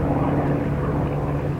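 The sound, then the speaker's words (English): A propeller plane's engine roars loud, a steady droning hum with a low buzzing tone as the plane goes into a nosedive, holding constant throughout with no voices. “I push down on the lever, and the plane goes into a nosedive.”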